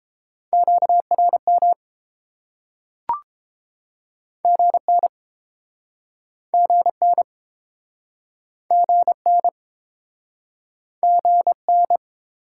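Quick bursts of Morse code sent at 22 words per minute: a steady mid-pitched tone keyed into short clusters of dots and dashes, with pauses between groups and a single soft click partway through.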